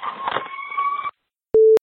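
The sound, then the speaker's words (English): In a voicemail recording, a brief stretch of buzzy, warbling noise gives way to silence, then a single short, steady electronic telephone tone sounds clearly, starting and stopping abruptly. “Hello, phone call coming.”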